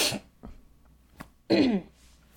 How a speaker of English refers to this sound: Get all my coughing out, too.